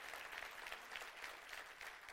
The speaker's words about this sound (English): But I want to commend the young people, because the truth of the matter is every great move or revolution that has happened because young people did something. Can we give them an applause?